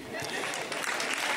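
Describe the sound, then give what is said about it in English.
An audience claps in a steady, dense burst of applause lasting about a second and a half, fairly loud and even throughout, with a few voices mixed into the clapping. “It's like, why are we clapping?”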